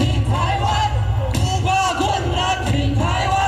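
A crowd at DPP presidential candidate Lai Ching-te's campaign rally in Yilan County, Taiwan, cheers wildly in cold weather as Lai dances and sings a song about supporting Taiwan, a dense, sustained roar of yells and whoops with steady loudness throughout, layered over a low thumping rhythmic backing.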